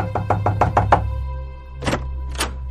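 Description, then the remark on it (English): A police officer knocking on a door at an address on 11th Street: a quick burst of about seven firm knocks, followed after a pause by two more separate knocks, all fairly loud over a low steady hum. “Now, at 11th Street, Smith knocks at the door.”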